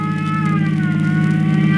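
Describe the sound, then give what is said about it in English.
A loud, steady siren wails on a fire chief's big red car racing across town, its tone sliding slowly, over the deep rumble of the car's engine. No one speaks. “In a matter of seconds, Chief Cody and Tim are racing across town in the chief's big red car, sirens screaming, headed for what they hope is a break in the baffling fire crimes that surround the Central Newsreel Company.”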